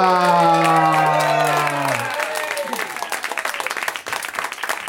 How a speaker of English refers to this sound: Listen to the crowd go nuts.